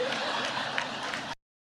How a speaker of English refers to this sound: They're all cheering that. How embarrassing.